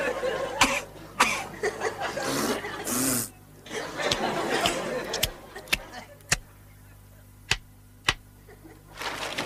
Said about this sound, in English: Piggy sneezes and coughs. Fozzie blows his nose or taps on the table. That's what it was.